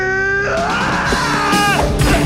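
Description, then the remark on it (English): A voice imitates a furious battle scream, one long, loud, strained yell with a wavering pitch that rises and cracks, filling the whole moment. “I love that, like, scream with the shaky cam as he's screaming, running out after them.”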